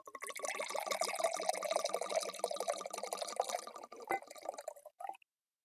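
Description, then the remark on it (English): Wine pours steadily into a glass for about five seconds, a gurgling stream with a rising fill tone, a brief clink near the end, then silence. “I'm going to pour it.”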